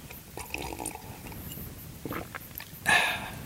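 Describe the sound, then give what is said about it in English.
A quiet stretch of soft rustling, then one short, loud slurping sip of tea near the end, airy and bright, with no talking. “So I'm just going to take a sip of tea.”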